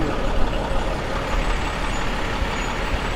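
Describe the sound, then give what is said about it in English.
A large truck pulls in with hissing air brakes, a steady, loud, hissing roar over deep engine noise, holding constant for a few seconds with no voices. “Hey, truck one. Hey, when you come in, pull up a little.”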